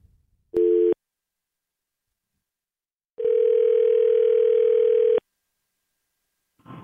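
A telephone ringback tone sounds twice, a short burst followed by a long two-second ring after a pause, clear and steady with no one talking.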